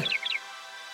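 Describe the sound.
A voice mimics a blue jay's call with two quick, high, downward-sliding squawks in a row, fairly loud, followed by quiet.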